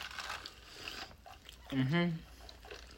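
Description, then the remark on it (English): Crunchy, moist biting and chewing of orange chicken wings fills the first second. After a short pause comes a brief low hummed murmur, then faint chewing noises continue. “That orange chicken wings are good, too. I'm trying them.”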